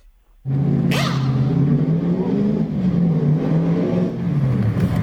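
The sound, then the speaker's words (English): A NASCAR race car engine suddenly roars to life and revs loudly and continuously as the car comes in and its tires are changed, a deep harmonic growl with a brief rising whine near the start, dominant with no voices. “Here comes a car now.”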